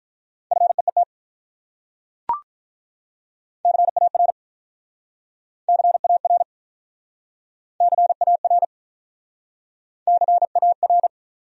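Fast Morse code beeps at 35 words per minute, sending common words in a steady mid-pitched tone as five short clusters of rapid dots and dashes separated by pauses, with a single sharp click early on and no voices.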